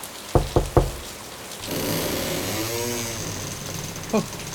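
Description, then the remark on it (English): Three sharp, loud knocks in quick succession on the wooden door of a house on a dark, stormy, windy night, followed by a steady rumbling engine-like hum and a single fainter knock near the end. “Knock on the door, Betty!”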